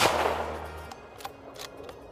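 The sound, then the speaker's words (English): A single suppressed gunshot hits hard at the start and rings down over nearly a second, followed by a few faint, sharp metallic clicks; no voices. “Despite common myths and misconceptions, suppressors do not silence host firearms.”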